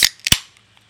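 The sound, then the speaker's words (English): A can of Old Style beer cracks open: a sharp snap, then a quick double pop with a low thump, followed by a faint fizzing hiss that fades away. No one speaks. “I'm going to reach over here, and I'm going to officially open my 10th Old Style of the night, and a very depressed Old Style.”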